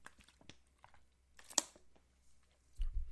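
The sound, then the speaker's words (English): Quiet wet mouth and throat noises of someone taking a swig of water flavored with a raspberry lemonade flavor packet, with soft clicks and gulps, one sharper crackle in the middle and a low thump at the end. “Let me take a swig of my water first.”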